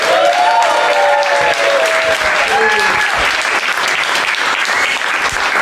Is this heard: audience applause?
yes